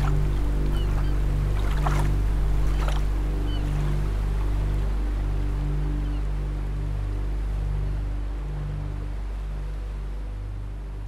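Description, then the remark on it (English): A steady, low rumbling wash of ocean waves at night rolls on continuously, fairly loud and even, with a few brief splashy bursts early on and no voices. “Instead, they were met only with the sound of their own breathing and the slow, steady shift of the waves.”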